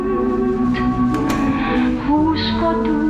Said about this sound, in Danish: Du ved da, jeg så godt kan lide den sang.